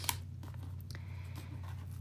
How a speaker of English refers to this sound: And as I shuffle the deck, I'm asking the cards, what advice do the cards have for all of us, the community, for this upcoming week?